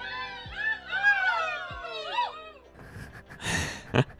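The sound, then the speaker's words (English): A canned crowd reaction: a chorus of overlapping high whoops and cheers with a couple of low thumps, then a burst of noisy applause-like rushes that ends with a sharp clap. “I think that's the first time we've used an artificial crowd response.”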